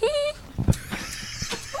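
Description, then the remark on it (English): An excited dog, excited at seeing friends, gives a short, high-pitched whine on a 60-foot bus, then falls quieter against a steady, rumbling vehicle background with faint voices and scattered noises. “Nervous, excited dog. Are those excited dog sounds? Very excited.”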